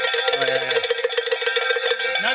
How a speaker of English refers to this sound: So you guys going to play dueling bells here? Let's have the news off. We'll see if you can be louder. You use my old one. I'll try and use your new one.